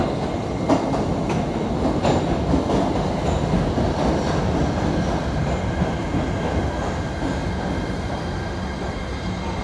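A steady, loud rumble of a moving train heard from inside a car, with continuous low-frequency roar and faint rattling clicks of the wheels on the rails throughout.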